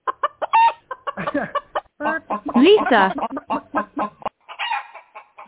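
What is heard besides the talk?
chicken clucking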